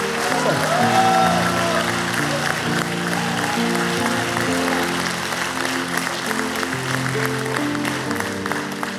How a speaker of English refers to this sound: like, why is everyone clapping? I just said a little prayer.